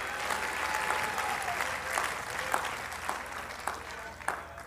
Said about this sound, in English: Oh, clap your hands, all you people, and shout unto God. Hallelujah.